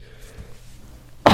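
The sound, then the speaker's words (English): A sudden, loud sneeze bursts out at the very end after a quiet stretch with a low hum, its harsh, hissy blast cut off abruptly. “Bless you.”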